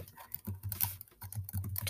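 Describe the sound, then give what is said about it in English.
Rapid, irregular clicking of keys on a computer keyboard as someone looks up tortoiseshell cats, a run of light taps with brief pauses, quiet and alone with no voices. “If you hear me typing, I'm just looking up tortoiseshell cat.”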